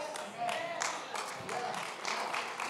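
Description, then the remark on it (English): Light, scattered clapping from an audience, a soft and unenthusiastic golf clap of uneven patters that continue steadily for a few seconds without building. “Come on, that's like a golf clap.”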